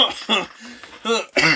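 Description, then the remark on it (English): Four loud, sputtering bursts of coughing from someone choking on a drink, in two pairs, with a short hoarse gap between them, each burst rough and voiced, almost like a laugh mixed into the cough. “I am dying on the podcast, choking on my drink. Okay, hold on. Stop coughing.”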